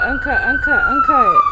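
An ambulance siren sounds on a street in Toronto, its rapid warbling yelp riding over a steady high tone that slowly drops in pitch as the vehicle passes along the street.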